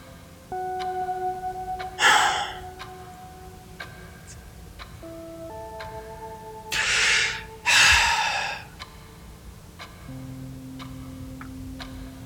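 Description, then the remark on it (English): A clock ticks steadily and quietly throughout, with a few loud breathy gasps breaking in and soft sustained tones humming in the background. No one speaks. “You guys have a clock?”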